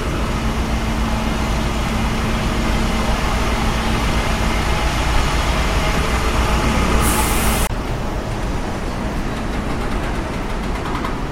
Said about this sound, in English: Jackhammers? More stereotypical noises from the city.